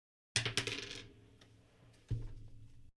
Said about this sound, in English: You don't even roll the right dice. Oh, yeah. Dude, was that like a D4? Yeah. It sounded like a D4 from this side of the D8.